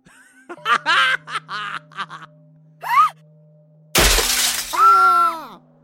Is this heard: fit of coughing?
no